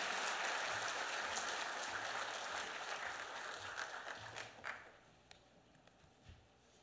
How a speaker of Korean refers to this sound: 우리 축복의 박수로 맞이해 주시면 감사하겠습니다.